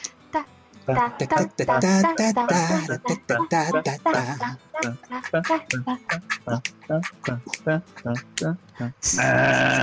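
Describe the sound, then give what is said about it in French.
A single voice vocalizes a quick, bouncy wordless end-of-vote jingle in short choppy syllables with a slightly bleating tone, ending abruptly in a brief burst of hiss. “Alors, on va faire la petite musique de fin de vote, c'est ça?”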